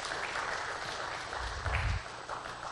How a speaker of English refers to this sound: Can I hear a good amen today? And some, yeah, you can give the Lord a good round of applause for that.